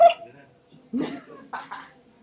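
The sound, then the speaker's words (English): A dog makes a few short, scratchy noises, four brief huffing bursts with quiet gaps between them, fairly soft overall. “What's the dog doing?”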